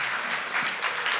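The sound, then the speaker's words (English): A church crowd claps for its worship musicians, a dense, even patter of many hands at a fairly loud level with no voices on top, sustained for just over a second. “Your music, I mean, it's okay to give a round of applause to our musicians.”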